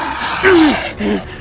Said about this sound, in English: Obscenities came out of my inhuman pursuers in guttural growls, exploding like fire, spraying molten slugs that were once steel and irony at me.